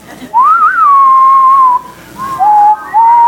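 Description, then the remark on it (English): A crowd whistles a slow Western standoff melody in unison as audience participation: a rising swoop into a long held note, then two shorter phrases, with no talking. “If you've ever watched country western, I kind of imagine this scene starting out with this music.”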